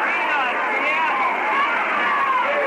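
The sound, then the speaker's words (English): A steady roar of crowd chatter fills the stands at a Mets baseball game against Montreal, with a loud foghorn voice hollering "Let's go, Montreal" from somewhere in the crowd amid the babble. “And some foghorn voice down below us just hollered, "Let's go, Montreal." There he goes again.”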